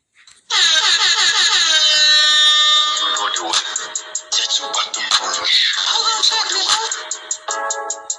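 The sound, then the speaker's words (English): A loud, blaring air horn alarm kicks in abruptly and holds for a couple of seconds, then breaks into choppy, stuttering blasts that continue to the end, dominant. “Let me sound this alarm, man.”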